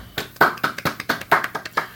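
A short round of clapping in thanks to a helper for his work at a show: about a dozen sharp, bright hand claps in a quick, slightly uneven rhythm, moderately loud, with no voices over it.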